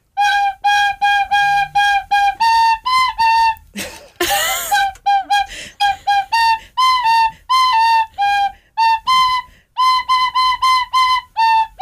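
A tin whistle plays a bright, bouncy pop melody of short repeated notes in quick rhythm, loud and close, with a brief breathy burst midway before the tune resumes.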